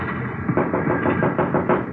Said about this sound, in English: It's locked. Knock.